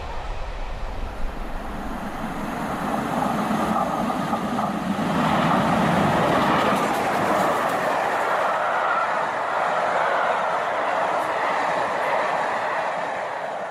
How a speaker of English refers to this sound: Over a level crossing, past railway workers taking pictures. There seem to be lots of Network Rail and other contractors out here today.